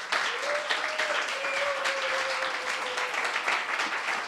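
An audience gives a round of applause, with dense, continuous clapping at a fairly loud level, and a sustained whistle-like tone rising above the clapping partway through.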